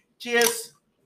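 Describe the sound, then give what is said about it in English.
A can of Topo Chico Straw Babbleberry Hibiscus drink (4.5% ABV, 2% juice) is cracked open: a sharp metallic pop and a short fizzing hiss, with a faint ringing tone underneath, lasting just over half a second. “We'll try the Straw Babbleberry Hibiscus. 2% juice. Crack.”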